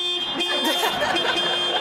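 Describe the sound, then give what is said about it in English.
A retired music teacher honks a car horn, playing Beethoven's Ode to Joy at police in a sustained, tuneful honk, loud over a faint background murmur. “Frustrated and stranded, the retired music teacher tried to coax police into returning them with a car horn symphony.”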